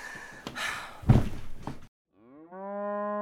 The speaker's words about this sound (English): Don't even think about it, cow.